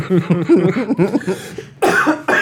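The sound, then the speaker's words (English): A drawn-out, throaty vocal strain gives way to two harsh, rasping coughs into a handkerchief, the second following quickly after the first. “Yeah, you keep coughing into that bloody handkerchief.”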